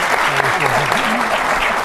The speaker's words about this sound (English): And let me give a round of applause to my panelists. Well done.